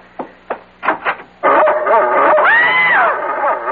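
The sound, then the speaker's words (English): A big dog on a bed gives a few sharp, spaced barks, then breaks into a loud, continuous run of yipping and whining cries that rise and fall in pitch. “there's a dog on our bed! A horrible big dog!”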